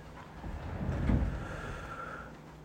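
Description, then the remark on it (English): A chair is dragged across a wooden floor to a children's table in one long, grinding drag that swells in the middle, ending with a faint squeak. Fairly quiet, with no voices. “Ethan dragged the chair across the wooden floor and put it at the children's table.”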